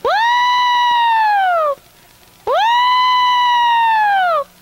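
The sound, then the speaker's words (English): A person lets out two loud, sustained distress hollers, a traditional hollering call, each swooping up then sliding slowly down in pitch with a siren-like wail, separated by a brief pause. “And one of my hollers was the distress holler, which went like this.”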